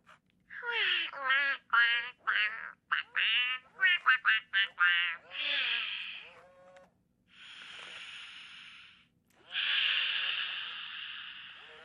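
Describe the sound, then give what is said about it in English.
An interactive toy duck, activated by tapping a card to it that introduces deep breathing, quacks in a quick, bright burst of electronic honks, then gives off several longer hissing, breathy whooshes, clear with no one talking. “But you can hear the suggestion of all the various things this wonderful duck is doing.”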